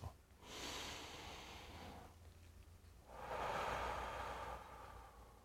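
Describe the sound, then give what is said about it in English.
A slow, deep breath drawn in through the nose, a brief pause, then a long, fuller exhale out through the mouth, part of a relaxing breathing exercise before a meditation, with no talking. “In through the mouth, in through the nose, and out through the mouth.”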